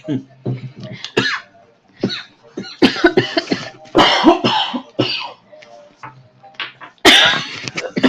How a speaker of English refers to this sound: Sorry for coughing.